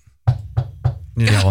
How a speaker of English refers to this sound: We'll knock on the wood of a table that Barry didn't make.